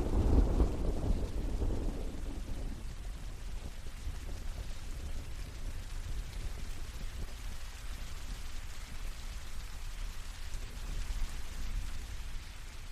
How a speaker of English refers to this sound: Just wandering around the island in the rain.